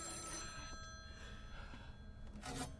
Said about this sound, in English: This phone has been ringing at night for 8 years now, confusing and enticing late-night passersby into answering it. It's a little bit of Columbia nightlife folklore.